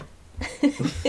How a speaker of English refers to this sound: You might be able to hear our dogs fighting and dying.